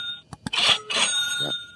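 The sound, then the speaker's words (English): A cash-register ka-ching sound effect from a novelty ka-ching button held in Travis Wright's hand: two sharp mechanical clicks, then a bright, high bell-like chime that rings on and fades over about a second. “Not only did I develop the iFart app to make phones all around the world fart, but I also developed the ka-ching button that Travis Wright is holding in his hand.”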